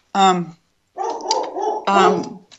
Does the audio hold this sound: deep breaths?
no